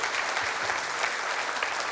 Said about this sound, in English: One more round of applause for those saying yes to baptism today.